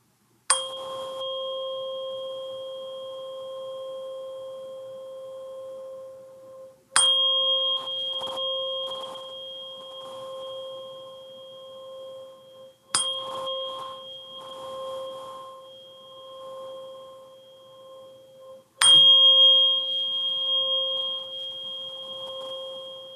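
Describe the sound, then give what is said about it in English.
A tuning fork is struck four times, roughly every six seconds. Each strike opens with a sharp metallic tap and then rings as a steady, pure mid-pitched tone with faint higher overtones. No one speaks. “I have a 528 fork. So I thought I'd just take a second here and play it so they can hear the 528 tone.”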